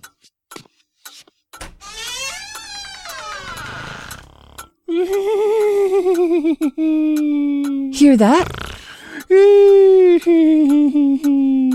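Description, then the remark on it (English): Heard over a telephone from a bedroom, a man makes loud, drawn-out wheezing wails that waver and slide in pitch like fire engine sirens, several in a row, after a brief spoken question. “I can't hear your husband on account of those fire engines. That's my husband.”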